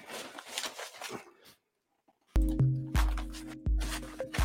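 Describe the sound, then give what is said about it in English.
Crinkly rustling of paper note pages for about a second, then a brief pause, followed by several heavy handling thumps and bumps as the sheets are shuffled. “I'm just rustling my pages.”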